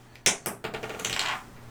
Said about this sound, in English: roll this dice. Roll. Roll the die. Dice. Begin.